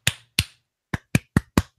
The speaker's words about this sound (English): I command it to cease. Oh, she slapped her hands together. I command it to cease, and I slap my hands, and that does a thing.